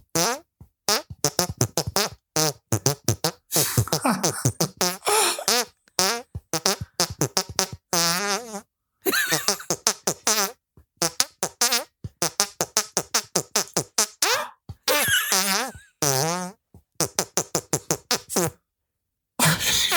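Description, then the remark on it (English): A long run of loud, wet fart noises playing a five-note movie theme over and over, dozens of sputtering bursts in quick succession with brief gaps, the rhythm quickening as it goes, with no talking. “A fitting tribute to a wet fart of a movie.”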